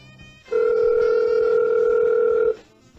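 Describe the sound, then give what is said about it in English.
A single telephone ring tone heard over the line: one steady, loud two-second electronic buzz that starts and stops abruptly, with no one talking. “Too high to pick up the phone.”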